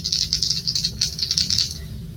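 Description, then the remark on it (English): Dice are rolled for the ship in a tabletop role-playing game, rattling and clattering in a rapid run of bright, dry clicks for nearly two seconds, then settling into quiet over a low steady hum. No one speaks. “And then, would someone like to roll for the ship?”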